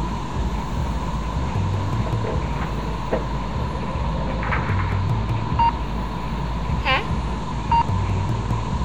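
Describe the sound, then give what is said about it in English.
An incoming call from the colony signals with a few short electronic beeps, spaced irregularly, over a constant low rumbling hum and a steady mid-pitched drone. No one speaks. “It's a call from the colony.”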